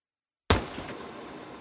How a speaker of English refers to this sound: Single gunshot.